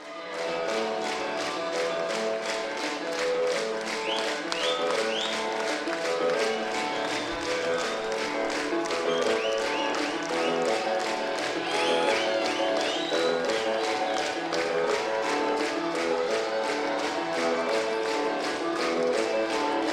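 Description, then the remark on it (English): A large live crowd claps in steady unison along to a band's intro music, the rhythmic claps loud and continuous throughout, with the instruments and crowd noise blending together. “it gets a response and it gets a really good reaction from the crowd clapping along with it.”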